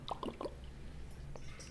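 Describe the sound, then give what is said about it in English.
Someone drinking water: three quick, wet gulping swallows in a row, then a faint click and a low steady background hum with no talking. “Okay, quick water break.”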